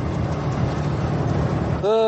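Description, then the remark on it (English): A steady low engine rumble fills the cabin of a moving bus, droning continuously before a brief rising mechanical whine cuts in near the end. “Ooh, I feel like there were so many more people on this bus.”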